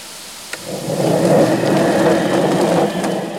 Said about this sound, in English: Then toss them in a big vibrating machine to get all the feathers off. We're going to turn it on.